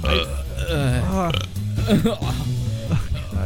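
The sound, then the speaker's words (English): A loud, drawn-out burp, its croaky pitch wobbling up and down, followed by more rough, guttural belching sounds that carry through to the end. “I could only hear our burps.”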